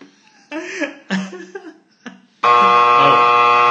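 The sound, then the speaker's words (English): A few short coughing, laugh-like vocal bursts, then a contestant's game buzzer is pressed and blares loudly and abruptly, holding a steady, harsh tone until the end. “I stole his buzzer.”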